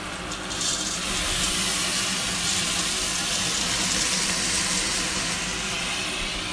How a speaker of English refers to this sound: my onions that are getting ready for the Egyptian rice. And they're moving around a bit. And then I'm going to pour a little bit of rice in there so you can hear it.